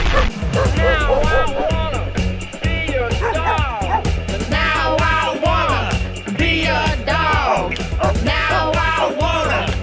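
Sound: people imitating dog barks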